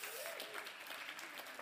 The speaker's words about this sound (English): Thank you so much, Ryan. Little applause, round of applause for Ryan.